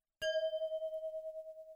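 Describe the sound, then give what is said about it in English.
Glasses clink once in a toast, a bright ring that hangs in the air with a gently wavering tone and fades slowly. Clear, with no voices. “There it is. Cheers.”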